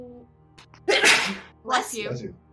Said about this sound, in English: Bless you. Yeah, I'm gonna... Oh, I thought I muted. I'm sorry. Demon sneeze.